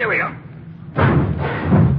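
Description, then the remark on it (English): A garage door heaves open with a sudden thump on a chilly day, then a loud rumbling roll that continues steadily to the end, after a brief murmur of voice at the start. “Want to open it? Watch the door”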